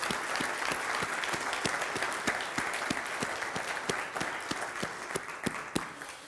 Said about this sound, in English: Well, good morning. Hey, let's give all of our kids and all of our volunteers another big round of applause. Can we do that?